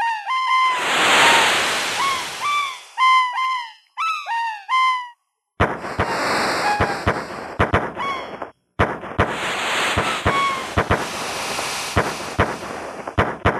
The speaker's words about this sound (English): Are these gunshots? Fireworks. Fireworks. That was misdirection.